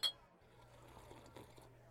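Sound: beer glasses clinking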